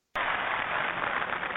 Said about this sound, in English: I'm just going to go through every single of these applause sounds until I get the right one.